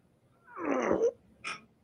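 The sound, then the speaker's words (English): A cat gives one drawn-out, wavering meow as it is picked up to be held and cuddled, followed a moment later by a short, clipped cry. No one speaks and the background stays quiet. “Let me grab my cat. That way I can hold on to it and cuddle and listen to the story.”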